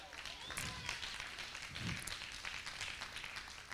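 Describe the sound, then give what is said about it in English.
An audience at a church service claps steadily for a few seconds to praise Jesus, a dense, even patter of many hands that sounds subdued, with no one speaking over it. “Give Jesus a clap.”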